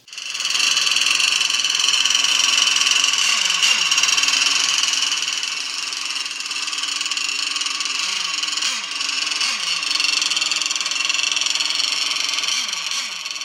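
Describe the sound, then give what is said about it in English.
A small nitro engine on a nitro-powered 1/8 scale RC hydroplane, being started and carried to the water, screams at a loud, steady high-pitched buzz for the whole stretch, with a few brief wavering revs and dips in pitch and no voices. “All right, you just heard the sound of a nitro-powered 1/8 scale hydroplane being started and carried to the water.”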